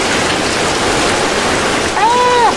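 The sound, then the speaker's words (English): Loud, steady rush of water pouring in through the side of a ship into its cargo hold, a dense continuous gush that never lets up, with a brief rising-and-falling tonal whine near the end. “There's water coming into the side. Side of the ship.”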